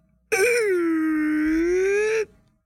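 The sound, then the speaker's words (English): A voice imitates a creaking door swinging open, meant as the sound of a rabbit hole door opening: one steady, drawn-out nasal tone lasting about two seconds, dipping slightly in pitch in the middle and rising again before it cuts off. “That was supposed to be the sound of the rabbit hole door opening.”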